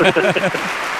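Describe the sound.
A few people clap their hands in a quick, scattered patter, close by. A voice talks over the start of it, and the clapping carries on alone for a moment after.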